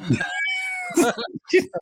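A cat lets out a loud, drawn-out yowl that bends in pitch, followed by a few shorter, harsher cries, like an agitated cat in a scuffle, close and prominent.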